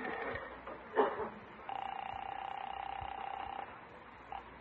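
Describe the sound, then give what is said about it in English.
A telephone is dialed with a short burst of clicks, then a steady electronic ringing tone sounds for about two seconds before cutting off, moderately loud. “I better phone Irene and tell her what's cooking”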